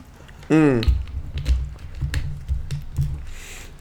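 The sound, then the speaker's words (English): Someone drinks water: a short squeaky vocal sound, then a steady run of soft, wet gulps and swallows roughly every half second. “Now, let me drink some more water.”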